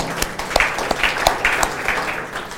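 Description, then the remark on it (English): A church audience applauds the worship team, many hands clapping in a dense, steady patter with a few sharper claps standing out for a couple of seconds, with faint voices mixed in. “Just a clap for the worship team.”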